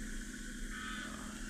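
A steady, low car engine hum, like riding inside a moving vehicle, with a constant rumble and road noise and no voices.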